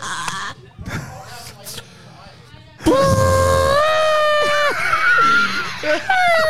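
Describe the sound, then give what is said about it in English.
Someone gives a loud, drawn-out vocal imitation of an elephant's trumpet: a high, wavering, strained wail lasting several seconds. Quieter murmuring and shuffling come before it. “Bro, that was the worst elephant. That was the worst elephant ever.”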